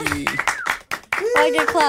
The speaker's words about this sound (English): I get claps. Oh, you get, yeah, you deserve all the claps in the world.